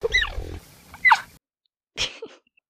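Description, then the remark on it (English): A cheetah gives a few short, high-pitched meows and chirps, the first sliding downward in pitch, followed by two brief breathy calls separated by silence, fairly clear. “Cheetahs can't roar. They meow. Like house cats. Take a listen.”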